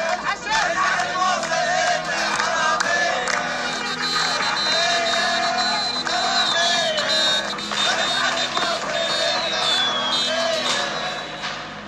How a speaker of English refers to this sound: I was in Baghdad on the day that ISIS was driven out of Mosul. The crowd, mostly Shia, cheered for the victory.